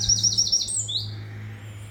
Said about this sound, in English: And just let them fill you with gratitude for the blessing that birds are.